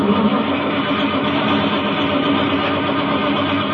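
At night in a driveway, a car engine that won't start cranks and grinds loudly without catching, a dense, rattling mechanical roar that runs steadily for a few seconds with no voices over it.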